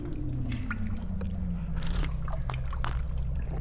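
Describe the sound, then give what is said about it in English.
Someone drinks water in a series of wet gulps and slurps, spaced irregularly over a steady low background hum. “Oh, you gotta taste this water. I've never had anything so good.”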